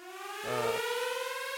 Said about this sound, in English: There goes the siren.